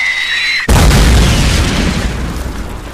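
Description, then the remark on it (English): A light mortar round hits a tower: a sudden, massive explosion erupts after a brief tonal whine, followed by a deep rumbling roar and crumbling debris as the tower is destroyed, slowly tapering off over several seconds. “Huge explosion. You feel it rocking in the ground.”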